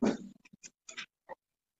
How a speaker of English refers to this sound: Sorry, I'm getting sidetracked by my dog trying to keep her from barking. There's people right outside her house talking, so she might go off again.